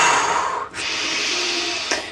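A deep breath: one long airy rush of air breathed in, a brief pause, then a sustained breath let out, with no talking.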